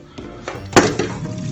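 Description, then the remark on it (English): A pan is handled in a kitchen, filled about halfway with water and put on the hob, giving a few irregular knocks and clanks, one noticeably louder than the rest, over a low background hum. “Pan. Fill. About halfway. Rest. Hob.”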